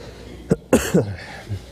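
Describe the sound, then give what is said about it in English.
A quick series of three rough coughs from a person with a head cold and congestion, within about a second, the second one the loudest, followed by a faint trailing rasp from the throat. “I was gauging how long I would get without coughing, and she was here for about 8 minutes, and I've hit 7, so she is winning the competition, if there is one.”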